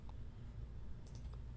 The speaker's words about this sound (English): to which I'm clicking confirm.